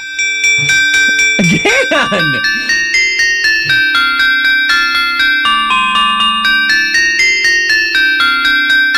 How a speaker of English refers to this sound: Artificial intelligence Christmas song number 2. At this point, I'm just doing it for the names because the songs so far have been terrible. Song 2 is Cinnamon Holly Bells.